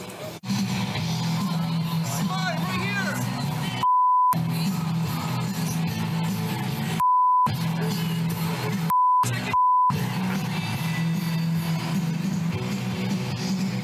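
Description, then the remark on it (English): Four short, steady censor bleeps cut in over the noisy bustle of an outdoor crowd on a political campaign trail, blotting out an angry man shouting a nasty insult at Justin Trudeau about his wife. The crowd murmur keeps going under and between the bleeps. “They beeped it.”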